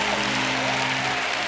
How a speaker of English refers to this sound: Those of you who need the blood to move on your behalf, I dare you to clap your hand right there. If you need the blood to move in your family members, Satan, the blood of Jesus is against you. Come on, clap that hand for the blood that moves.